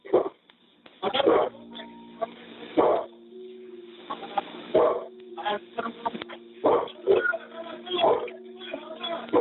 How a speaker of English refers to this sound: But you heard the dog barking. Maybe you need to go back and re-listen to that. Remember, they said the dog was dead.